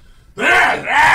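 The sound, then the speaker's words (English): After a moment of quiet, a single loud, voiced sneeze erupts, drawn out and breathy, with a brief dip midway before the final burst. “Bless you.”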